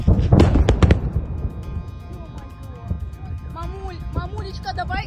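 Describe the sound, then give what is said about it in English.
A quick cluster of deep, muffled booms from explosions in the distance near a Black Sea resort on the Crimean Peninsula opens the scene, followed by a low rumbling background as fleeing tourists talk and call out. “Tourists at a Black Sea resort fled as explosions and a column of smoke appeared in the distance.”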